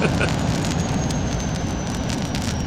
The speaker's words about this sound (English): I didn't hear the boom, though. It just sounded like a big engine.